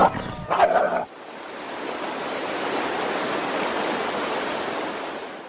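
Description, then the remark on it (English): A coyote snarls and yelps as it leaps to attack, in a loud, harsh burst lasting about a second, then cuts off abruptly into a steady roar of rushing water that fills the rest. “It catches them in seconds and leaps at Sassy's back with a snarling open maw.”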